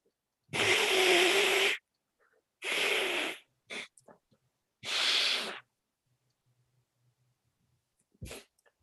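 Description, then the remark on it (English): Three long, loud, wet nose blows separated by short pauses, with a few brief sniffs and snorts between and after them. No one speaks. “I have to blow my nose.”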